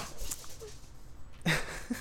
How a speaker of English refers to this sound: Dogs running in the background. Yeah, that'll probably get cut out.